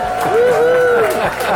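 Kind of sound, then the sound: crowd, crowd cheering and applauding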